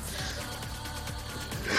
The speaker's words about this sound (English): That's a good burp.